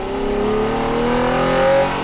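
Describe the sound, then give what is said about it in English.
A car engine revs steadily higher as it accelerates, its droning tone climbing in pitch over two seconds, loud and sustained with no voices. “Greg pushed the pedal, his hands tied on the steering wheel.”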